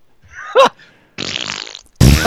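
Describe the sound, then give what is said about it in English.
A voice blows a few wet, sputtering raspberry fart noises with the mouth, a short squeaky burst followed by a longer buzzing one and a loud blast at the end. “Now we can make fart noises.”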